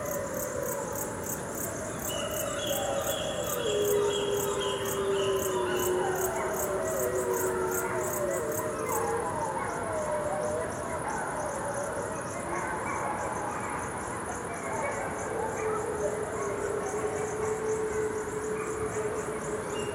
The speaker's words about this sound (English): Remarkably, the irradiated wolves appear to have developed protective mutations that increase their odds of surviving cancer. And hear the sound of the gray wolf of Chernobyl.